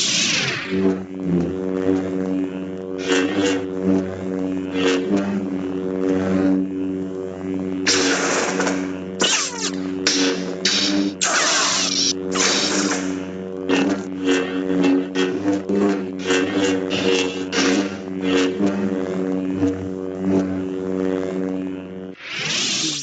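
A steady, buzzing lightsaber hum drones throughout, broken by repeated loud bursts of harsh, sweeping TIE fighter screech that come in irregular clusters; no one speaks.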